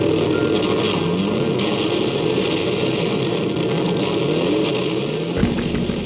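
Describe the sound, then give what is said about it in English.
Distorted guitars in a song mimic a revving motorbike, a loud, continuous growl with rising and falling pitch sweeps like an engine throttling up, shifting abruptly near the end. “When I was listening to the song, me and my siblings would like sing along in all of the big parts, and we were just hooked on the way that like the motorbike sound was created by guitars.”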